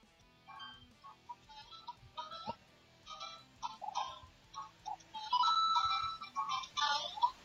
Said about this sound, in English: This is your cell phone. What do you think you're just supposed to be Rob's phone? Like I'm some dirty little... Why won't you answer me? I'm not going to ring forever